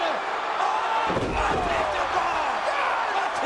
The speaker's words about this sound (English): that crowd.